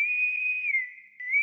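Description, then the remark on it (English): A single sustained, high-pitched whistle blast, blown as a signal, holds a steady tone, dips slightly and softens briefly near the end, then swells again before cutting off. No voices are heard. “The signal! Pew, the signal!”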